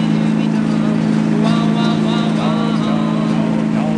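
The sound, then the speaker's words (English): A car engine drones steadily with a loud, constant low hum as the car, which has a clutch, is driven, while voices talk over it. No clear start-up or rising rev is evident. “This car can get away from you.”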